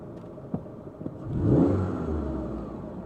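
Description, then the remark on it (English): A Chrysler 300 SRT8 rental car's engine revs up with a deep, swelling roar around the middle, then settles into a steady rumbling drone as the car pulls away, preceded by a couple of faint clunks. “The Chrysler 300 SRT8.”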